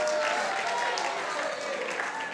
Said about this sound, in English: I made the honor roll. No, don't cheer for that. No.